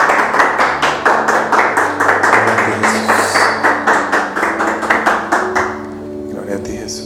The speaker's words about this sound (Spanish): ¿Cuántos le dan el aplauso al Rey? Gloria a ti, Jesús.